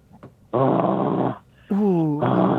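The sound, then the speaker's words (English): A person imitates a wolf howl with two loud, drawn-out, harmonic-rich vocal bursts. The second bends and wavers in pitch after a brief pause. “Howl boy. Like a wolf. Let me hear the wolf.”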